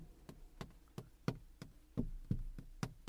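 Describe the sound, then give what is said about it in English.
Light, sharp taps on a car window, made to imitate a mouse moving a screen so it taps a window, repeat in a steady rhythm, roughly three per second, with a hollow knock to each one and no voices. “So it sounds like the mouse is tapping the window. I'm doing it on the car window now.”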